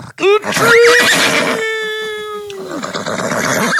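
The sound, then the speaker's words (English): A horse whinnies loudly, one long call that rises sharply, holds a steady quavering pitch for about two seconds, then drops away, followed by breathy noise. “the horse dies.”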